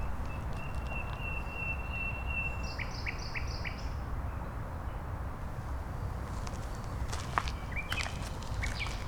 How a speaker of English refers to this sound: Look here, we can really hear... If we stand here for a bit, okay, we can hear the nightingale.